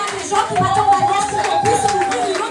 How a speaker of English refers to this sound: Oh, are you here? I thought you clap your hands.